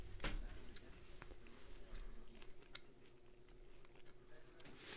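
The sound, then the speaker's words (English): Wet chewing with soft irregular crunches and clicks, a steady mouthy rhythm of bites and mastication, with no talking. “Not chewing in the mic.”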